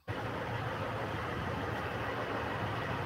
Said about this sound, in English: I'll show you some, all the semi trucks. It was just it's awesome. Just walking through the parking lot.